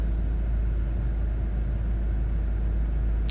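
Steady low engine rumble inside a car, a continuous droning hum with no speech, holding at an even level throughout before a brief click at the very end.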